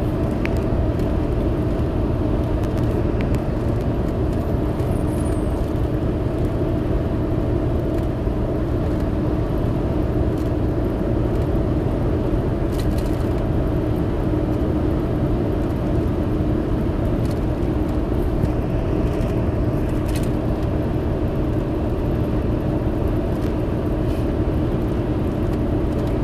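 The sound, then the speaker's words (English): Steady road noise from a car in motion, a dense, constant low rumble with a faint hum running through it, unchanging in loudness for the whole stretch, with no voices. “The calls were coming through, and I'm doing it through my phone because I'm driving.”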